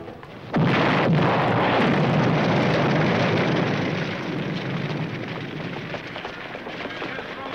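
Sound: car exploding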